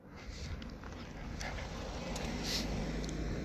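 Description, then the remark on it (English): A car drives past outdoors on a road, its broad rushing rumble swelling steadily louder toward the end of the short clip, with some wind noise in the background. “Another car coming past, inconsiderate.”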